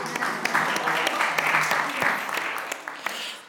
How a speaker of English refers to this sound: oh yeah, let's clap.